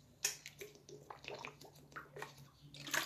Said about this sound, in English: Let me sip this water real quick.